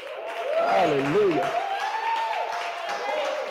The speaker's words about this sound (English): Come on, give us a hand clap. 11 years of marriage.